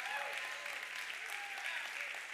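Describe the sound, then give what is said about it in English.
A church audience gives the Lord a shout and a hand clap together, a dense, steady wash of hand clapping with voices cheering and calling out over it throughout. “Come on, give the Lord a shout and a hand clap.”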